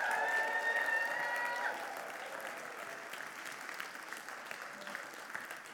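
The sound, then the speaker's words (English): An audience in a church bursts into sustained applause with cheering, a high whistle or shout riding over the dense clapping for the first couple of seconds before the clapping continues steadily. “Now, let's give them a mighty applause right now.”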